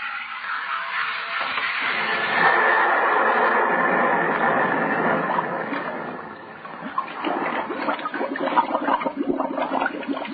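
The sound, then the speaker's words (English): Loud rush of churning, bubbling water as a helmeted diver is put over the side and goes down into cold water. It runs steadily for about ten seconds, eases briefly midway, then gurgles on. No voices. “Water cold. Down.”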